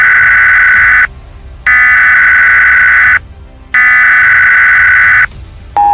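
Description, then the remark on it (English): The United States emergency alert tone, as sent to every TV, radio and cell phone in a nationwide alert. A loud, harsh electronic warning tone blares in three long bursts, each about a second and a half, separated by short silences, with a jarring steady buzz-like pitch and no voices. “Eastern Time, every TV, radio, and cell phone in the United States will blare out the distinctive jarring electronic warning tone of an emergency alert.”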